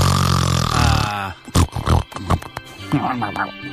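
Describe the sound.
A loud, rough, pig-like snoring snort from a person sleeping on her back lasts about a second, followed by a string of shorter, uneven snuffling and grunting bursts with a voice-like quality.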